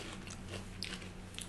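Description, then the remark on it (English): Chewing with crisp biting crunches, a few sharp bursts standing out over a steady low hum, no one speaking. “I'm trying to be polite with the chewing, but you're just going for it.”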